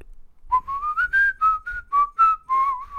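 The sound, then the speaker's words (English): Someone whistles a short melody in imitation of a keyboard line: about eight clear, mid-high notes that rise, then dip and level off, with no talking. “Won't be as good as what I did in my … way.”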